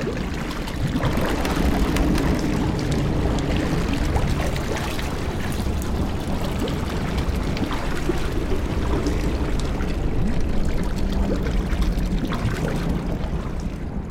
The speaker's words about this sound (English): Soon after, a boat rose from the depths of the river in front of him.